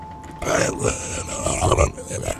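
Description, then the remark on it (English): A voice imitates the gurgly gill sound of a sea creature that pokes its head at a window: a rough, bubbling growl lasting about two seconds, throaty and fairly loud, with choppy pulses and no words. “And as you start to try to affix your gaze, one actually has been crawling up and pokes his head at to the window where you're at, and you hear this gurgly gill sound.”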